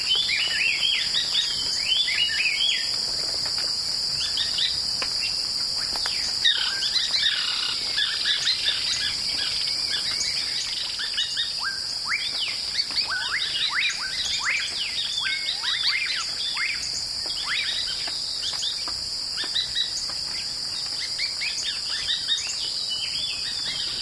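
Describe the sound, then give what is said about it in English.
An outdoor soundscape in a shrubby field on the Yucatan Peninsula, Mexico: many birds chirp and call in quick, overlapping bursts, set against a steady, high, continuous drone of insects. No one speaks. “This avian soundscape, recorded in a shrubby field, can be found on the CD ….”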